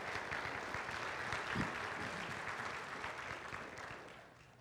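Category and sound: crowd, audience applauding the musicians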